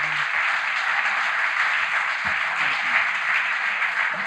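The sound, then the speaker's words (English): A crowd applauds steadily, dense overlapping clapping forming a loud, continuous wash of sound that holds evenly throughout without pause. “So let's give one more applause”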